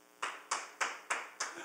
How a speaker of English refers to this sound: So why don't you stand? Why don't you applaud him as he comes?